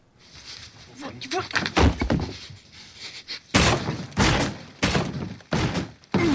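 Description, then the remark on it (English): A fist punches through a wall in a series of loud, heavy thuds with cracking, crumbling bursts, several blows in an uneven rhythm after a stretch of scattered knocking and rustling. “That's him punching a hole through the wall.”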